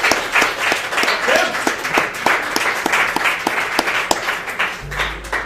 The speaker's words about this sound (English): Let's give Mr. Ferraris a round of applause.